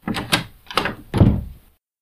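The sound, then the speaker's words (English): A door knob rattles and turns with a couple of quick metallic clicks, then a door on the bottom level of a building swings open with a low creaking thud, fairly loud, with no voices. “I'd never been through the door in front of me. Surely it would be locked. I turned the knob anyway.”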